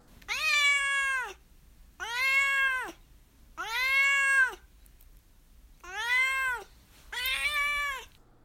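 A cat named Duarte meows five times, each call long, drawn out and loud. They come at a steady pace, the last two almost back to back, with no talking.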